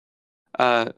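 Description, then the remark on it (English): A single loud, throaty belch bursts out after a moment of silence, deep and raspy, lasting under half a second before cutting off. No other sounds around it. “Loud, extended belch.”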